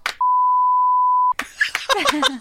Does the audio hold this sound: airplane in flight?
no